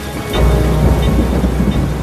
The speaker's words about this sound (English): It would certainly be challenging, and you might want to produce some umbrellas for the Tourist Office gift shop, as it doesn't just rain here, it hammers it down. A lot!